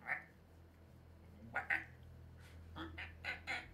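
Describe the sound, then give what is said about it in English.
A person's voice imitates the meow of their big cat, Boots, with a string of short, nasal, honking mews: one at the start, then several more in uneven bursts, fairly strong. “This is my impression of my cats. Like my big cat boots goes.”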